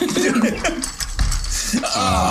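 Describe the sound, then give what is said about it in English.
A broken chair creaks and groans in a drawn-out series of squeaky, mechanical strains, with a brief low thump midway and shifting, rasping tones throughout. “You really need to get that chair fixed.”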